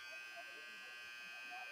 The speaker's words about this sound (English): And shot clock violation. It was a shot clock. That didn't take long to come into play. Now we just need to figure out how to shut the buzzer off. Yeah, that buzzer sound is quite annoying.